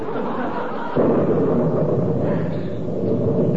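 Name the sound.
thunder clap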